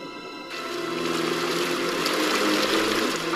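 Continuous sloshing and splashing water from Lenny night swimming, steady, rising after a brief quieter start and holding at a constant level with no voices.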